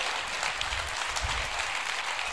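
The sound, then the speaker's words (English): A crowd at a church applauds steadily to welcome a guest speaker, a pastor. It is a dense wash of many hands clapping at once with no pauses, at a constant moderate level throughout. “Harvesters, do me a favor and give a Harvest Church welcome to our very own Pastor”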